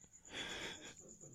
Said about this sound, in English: Also, stop breathing in the microphone.